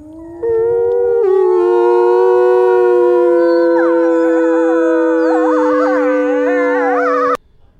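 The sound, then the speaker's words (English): A pack howl with a group of wolves: a long, loud howl rises and holds steady, soon joined by several other wavering wolf howls layering into a chorus, then cutting off abruptly near the end. “I felt it would be wonderful to now try a pack howl.”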